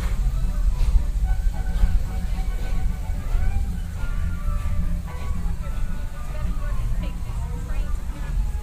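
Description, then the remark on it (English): A train rolls past, its deep, steady rumble filling the whole stretch without letting up, while faint voices murmur underneath. “Oh, there goes the train”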